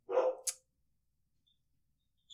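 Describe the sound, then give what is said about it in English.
A single sharp dog bark, fairly loud, quickly cut off and followed by near silence with only a faint click near the end. “And his bark is very clear and concise.”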